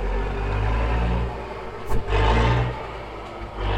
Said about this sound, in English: I think the truck is going.